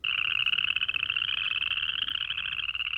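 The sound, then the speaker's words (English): A dense chorus of chorus frogs trilling together, a continuous high-pitched pulsing rasp at steady, fairly loud volume throughout, with no voices and a faint low rumble underneath. “And there's one called the chorus frog, which can be found at Shaw Nature Reserve. And their calls can be heard at the reserve starting in spring and into the summer.”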